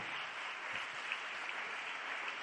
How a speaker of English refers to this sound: Come on, stand with me now and let's just clap our hands unto the Lord together, everybody. Would you do that with me?